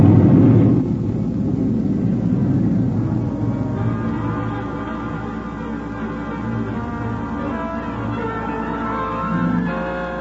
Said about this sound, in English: The bridge is cracking!